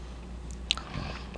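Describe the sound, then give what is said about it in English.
Quiet, crunchy chewing with a sharp, crisp bite near the middle and softer crackling mouth noises around it; fairly faint, with no talking. “It doesn't mumble. No, it crunches.”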